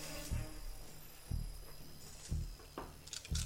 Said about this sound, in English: I want the people listening to this podcast hear all these dice roll, because I think it's awesome.